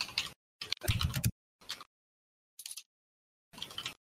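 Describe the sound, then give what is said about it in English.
Quick bursts of typing on a computer keyboard as someone types messages to people, fairly loud, arriving in short irregular clusters of clicks separated by brief silences. “I'm typing to people, so it's going to be like...”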